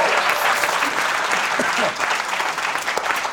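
A show's audience applauds steadily for a few seconds as a first-time guest is introduced, a dense, loud wash of many hands clapping at once with no break in the noise.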